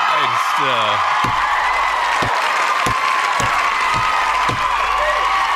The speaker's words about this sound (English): It's an appropriate way to start out a new week. Mr. 806 in a FICO score. That applause was for you and how you dazzled the night away with the United States, with the NFL and a new national anthem being played.